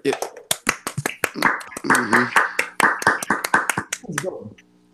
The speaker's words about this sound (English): Yeah. Round of applause, gents. That was tremendous.